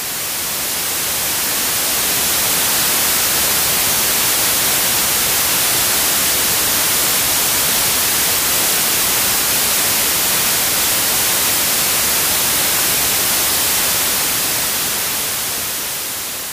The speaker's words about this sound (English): This is white noise.